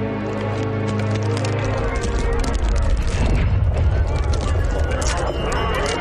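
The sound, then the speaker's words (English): A ship crashes into the dock at the end of a wharf: a loud, sustained roar of rumbling, grinding and splintering cracks. Low droning tones underneath fade out after the first couple of seconds. “That ship crashed into the dock.”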